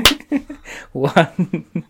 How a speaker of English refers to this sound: Anyway, shall we do a marker? Yeah. Okay, so 1, 2, 3, clap.